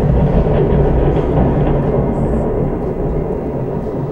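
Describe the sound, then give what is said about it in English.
A thunder sound effect in an American gothic horror soap opera audio drama: a loud, continuous low rumble with a rough, clattering texture that holds steady for about four seconds without easing off. No voices. “Is that thunder? Yeah, that's thunder.”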